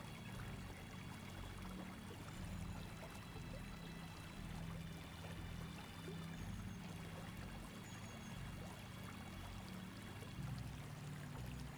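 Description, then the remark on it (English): A waterfall's rushing water roars steadily and evenly throughout, a dense, unbroken wash of sound with a deep low rumble and no voices. “And now we will take a few silent moments focusing on the breath and the energy of the waterfall.”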